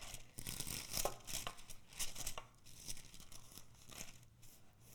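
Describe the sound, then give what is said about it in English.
Paper pages of a Bible rustle and crinkle in a quick series of dry, scratchy bursts as someone flips through to John chapter 7. No one speaks. “I'm old-fashioned. I use paper.”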